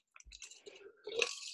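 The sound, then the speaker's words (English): Sips of water: a few quick wet slurps and mouth clicks, then a louder, breathy gulp and swallow near the end, with no talking. “If I can barbecue chicken on a podcast episode, you can take a sip of water.”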